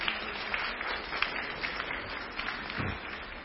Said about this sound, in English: a round of applause for coming forward. Well done.